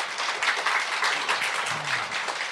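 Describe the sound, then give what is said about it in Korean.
Sustained applause from an audience, a dense crackle of many hands clapping at steady loudness throughout, with no one speaking over it. “박수 한번 주시기 바랍니다.”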